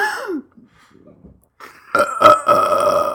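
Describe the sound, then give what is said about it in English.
A short burp is followed by a pause with faint rustling, then a louder, drawn-out belch with a rough, gurgling onset that continues to the end. No one speaks. “You're stuck in a burp loop?”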